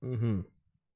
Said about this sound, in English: Oh, shit. The boy is up. Oh, and he's being a terrorist. Yeah, it's funny because, like, there's, like, this is a new meow that I've never heard before. Yeah. He woke and chose violence. Yeah, for real. He's being a kitten.